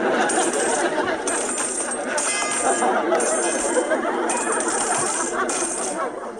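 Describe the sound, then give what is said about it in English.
A continuous metallic jangle of many keys, from about 20 guests at a party, being tossed into a container, clinking and clattering steadily and fairly loudly, with faint crowd chatter in the background. “Look, if anyone has a key, please put it in here.”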